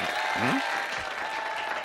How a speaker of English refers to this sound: Okay, people, let's have a round of applause for the real comptroller.